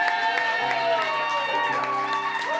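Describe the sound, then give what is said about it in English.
A crowd claps and cheers loudly and steadily for a band at a live show, with scattered whoops and shouting voices rising above a dense wash of applause throughout. “First of all, let's give a round of applause for this amazing fucking band.”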